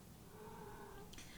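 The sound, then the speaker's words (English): A cat named Cosmo lets out a single drawn-out, whiny meow, fairly faint, that trails off into a brief breathy rustle at the end. “Meow. Cosmo, it's okay, baby.”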